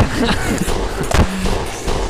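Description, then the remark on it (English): A single sharp gunshot cracks out about halfway through as a man accidentally shoots himself in the hand outside; it is loud, standing out from a busy, noisy background with faint voices. “I shot myself in the hand.”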